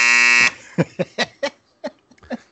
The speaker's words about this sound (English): I am really sort of sad that I don't think the buzzer's caught Andre one time this round table, and it's kind of sad to me.